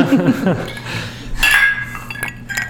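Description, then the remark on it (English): Glasses clink together in a toast, a few bright chimes, with a murmur of voices underneath. “Cheers. Cheers.”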